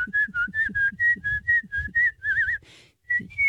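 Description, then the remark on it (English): Someone whistles a lively, birdlike tune: a string of quick, bright notes in a steady rhythm, then a warbling trill and a brief pause before a final note. “My mom actually whistles better than me.”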